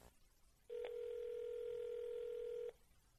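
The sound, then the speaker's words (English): A steady telephone dial tone hums for about two seconds at an even, moderately loud level while a call is being placed, with a faint click near its start. There are no voices, and quiet background noise surrounds it. “We're calling”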